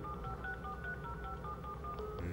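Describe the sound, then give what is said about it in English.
A rapid string of telephone keypad dialing tones as someone tries to call the police, short steady beeps pressed one after another in quick rhythm, with no talking over them. “I think that calling the police would be a very good thing to do right now.”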